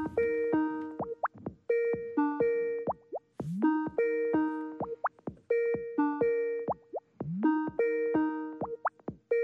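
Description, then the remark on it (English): A Skype call ringing tone: a bright, bubbly synthetic melody of quick plucked notes, repeating its short phrase about every two seconds, loud and steady with no voices. “Is it ringing?”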